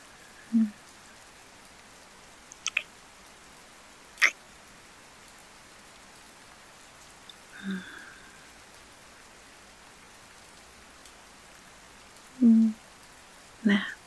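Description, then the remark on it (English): Steady rain patters softly on a surface, a continuous hiss broken now and then by a few louder, isolated drips and taps. “It feels like everything else is just washing away with the rain.”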